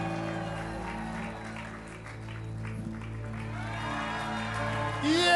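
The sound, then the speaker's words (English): A crowd cheers and claps steadily for several seconds, many voices blending into a continuous roar that swells louder near the end. “Let's give him a cheer.”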